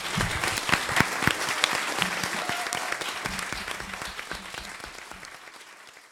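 An audience applauds the authors at a Midtown Scholar Bookstore author reading, a dense patter of many hands clapping that holds strong and then gradually tapers off toward the end, with a few faint voices mixed in.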